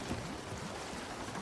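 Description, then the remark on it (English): A ship that has lain there a long time sinks to the bottom with a steady, churning rush and gurgle of water, continuous and fairly soft throughout, with no voices. “Well, obviously it wasn't, because there it goes. Yep. Off to the bottom.”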